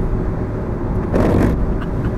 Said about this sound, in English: Just one thing, your wipers are a bit loud. I went, yeah, I've changed them twice and they're still loud.